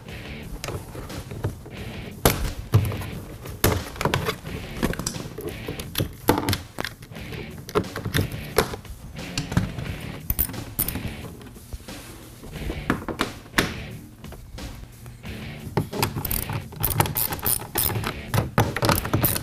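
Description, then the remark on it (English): Seven plastic tree clips behind a door panel being pried loose with a larger panel removal tool: an irregular series of sharp pops and snaps, mixed with creaking and scraping of plastic as the panel is levered off, with no talking. “Now to get the door off, there's seven of these plastic tree clips that are behind the door, so use a larger panel removal tool because you're going to need to pry those off of there.”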